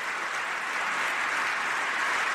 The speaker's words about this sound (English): Those are Republicans that are applauding, not Democrats.